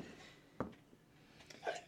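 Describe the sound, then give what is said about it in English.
A single sharp, explosive sneeze bursts out, followed by a brief muffled vocal sound and quiet background noise. “Bless you.”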